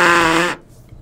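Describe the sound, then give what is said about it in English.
A loud, buzzy raspberry blown with the lips by a Niners fan, a single fart noise made by mouth lasting about half a second with a rich, vibrating tone, then cutting off into near silence. “We have a Niners fan who's turning red by making fart noises.”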